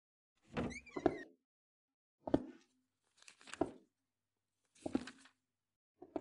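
household object, front door opening

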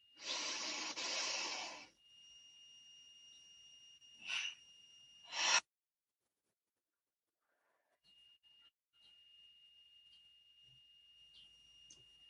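human body sound, breathing in through nose

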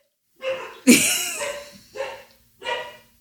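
animal, dogs barking

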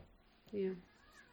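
animal, cat meowing

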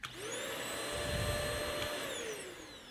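household object, vacuum cleaner running

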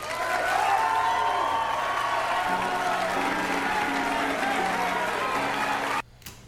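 crowd, audience applause

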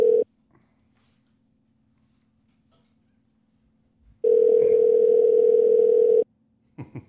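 signal or alarm, phone call ringing tone

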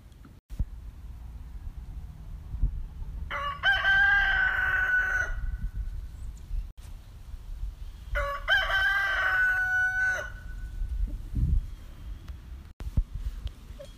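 bird, rooster crowing

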